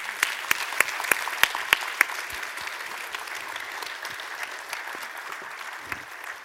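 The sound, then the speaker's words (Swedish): An audience applauds a panel at a book event, a steady patter of many hands clapping with a few sharp, louder claps standing out early on, then gradually thinning and softening toward the end. “Ska vi ge dem en stor applåd?”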